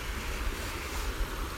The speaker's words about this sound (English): And I'm down here by the creek. It's up. We had rain, and it's all muddy, and you can probably hear it. It's a really nice creek.